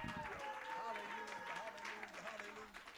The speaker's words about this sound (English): Somebody ought to clap your hands and shout.